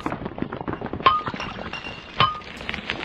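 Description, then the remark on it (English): A chisel chips at black granite at a quarry to free an embedded box: a steady patter of small, dry taps and scrapes, broken by two sharp, ringing metallic clinks about a second apart. “Something embedded in the granite. It's a box. I need a chisel.”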